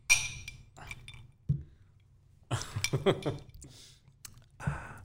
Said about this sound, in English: Hang on. Let's take a drink on that one.